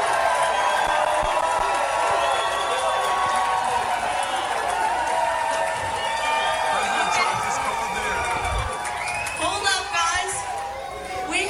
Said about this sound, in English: Donald Trump decided to call her rally and got quite a response from the crowd